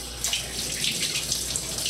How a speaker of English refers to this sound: All right, I'm gonna rinse this knife.